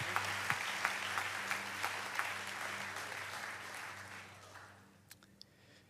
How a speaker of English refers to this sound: If you'll receive it, will you give a hand clap unto the Lord tonight? Thank you, Jesus.